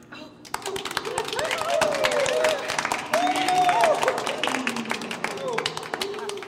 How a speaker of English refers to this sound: Give yourselves a round of applause. You've earned it.